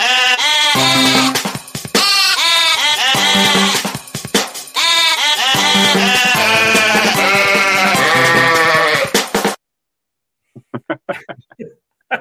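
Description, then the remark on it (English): A loud, dense chorus of sheep bleating, wavering cries layered over one another almost continuously, then cutting off abruptly before a man begins talking. “But this is the Welsh World Cup song.”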